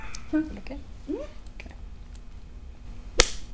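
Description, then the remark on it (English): A single sharp whip crack from a cane striking a woman, loud and sudden, snaps near the end, after a few seconds of faint voices and low murmuring. “Oh, a little whip sound in there.”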